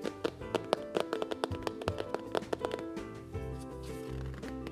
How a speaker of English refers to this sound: Well, the cow took one look and charged straight at the pig. Then jumped on the table and tapped out a jig.